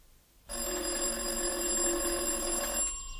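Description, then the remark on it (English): The doorbell of an apartment door, not the street door, rings in one long, unbroken burst of a little over two seconds, a loud, steady metallic trill with no voices, then cuts off abruptly. “there was a ring at the door. Not the street door, the door of this apartment.”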